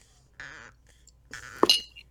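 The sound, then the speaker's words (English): Glass clinks as someone drinks whiskey: a ringing glassy tone, then a sharper clink with a brief bright chime after it, over near silence. No one speaks. “I still have this whiskey here, so I'm going to drink some because of whatever's going on.”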